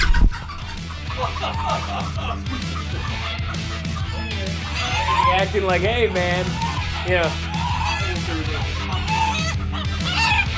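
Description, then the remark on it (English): A chicken, hatched about seven months earlier, clucks and squawks repeatedly while people discuss the structure of its foot. Its calls rise and waver over steady background noise as people talk over it. “And speaking of personality, while discussing the structure of a chicken's foot, one of them decided to have a little fun.”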